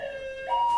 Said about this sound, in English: Alarm clock? What are you saying? That they can't wake up? No, I thought it was going to be a fun alarm.